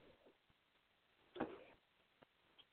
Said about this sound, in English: I apologize for any random clicks or whistles you might hear in the background. That's just Tony Bird.